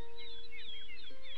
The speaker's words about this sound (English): That's those young birds chirping for their mama that's never coming back. Now, you just listen to that for a while.